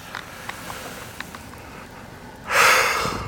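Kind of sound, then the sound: human body sound, a person yawning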